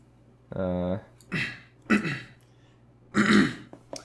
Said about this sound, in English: Sorry, I'm like actually clearing my throat.